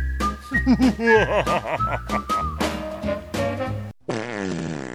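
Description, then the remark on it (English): A short, goofy intro-music jingle of buzzy, whistle-like tones that bend and glide over steady beats, loud, ending on a dense sustained chord. No one speaks. “But first, we're going to play our intro music.”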